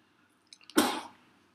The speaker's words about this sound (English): Okay, I had to sneeze. I'm sorry. Well, God bless you. Thank you. That was God saying what you just said was some bullshit.